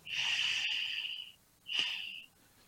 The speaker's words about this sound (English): And now that we know where it is, we'll just take a cleansing breath in through the nose and out through the nose, straight to the shoulders and neck.